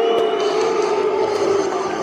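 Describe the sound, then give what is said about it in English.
A stadium crowd of England football fans boos steadily, booing Gareth Southgate as he goes to applaud them, a dense, sustained drone of many voices holding a low, droning tone at an even loudness throughout, with no individual speech standing out. “England fans booing, quite rightly too.”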